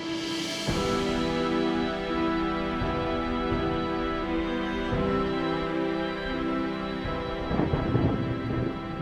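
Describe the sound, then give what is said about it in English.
Steady, continuous rain pours throughout, with low rumbles of thunder, layered under a sustained droning musical tone; nobody speaks. “Four Crimson Command guards stand on duty in the rain.”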